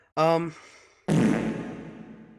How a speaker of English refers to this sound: What was that? It was a fart with a applied reverb. Okay. At least it was on your soundboard.